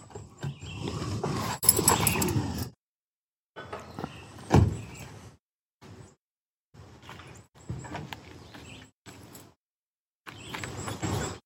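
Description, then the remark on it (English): A door opening in a played video, heard as several bursts of mechanical rattling and sliding noise separated by short silences, moderately loud, with no one speaking. “Let's do the door video.”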